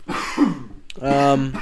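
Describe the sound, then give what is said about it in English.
A deep, rough cough right up close to the mic, a single throaty burst, followed a moment later by a short voiced grunt or hum. “Ooh, that cough was real deep.”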